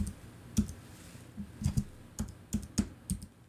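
Typing the words 'mine rescue' on a computer keyboard: about a dozen crisp key clicks in an uneven rhythm, fairly quiet, with no voices.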